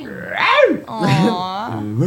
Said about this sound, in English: Those dogs are fighting. Aww.